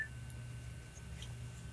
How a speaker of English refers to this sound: And you will have a little beep that will go beep every time you are done. The minute is finished.